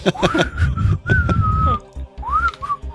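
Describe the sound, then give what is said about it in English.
Someone whistles a short tune, the clear pitch sliding up and holding across several phrases, with some low, rumbling background noise underneath. “You put your lips together and you start to blow. You blow there my whistle”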